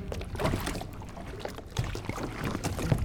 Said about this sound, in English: We're going to use one of the firefighters' boats. We're rowing across the lake? To the western wall of the cistern, yes.